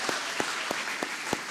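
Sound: audience applause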